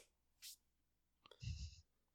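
A single sharp hand clap cracks out after a short breathy hiss, followed by a brief low rumble and a thin high-pitched tone that fades within half a second.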